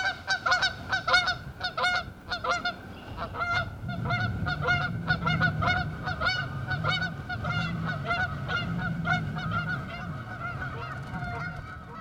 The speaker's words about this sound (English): You've been listening to, you guessed it, Canada Geese, Griffey Lake, Bloomington, Indiana.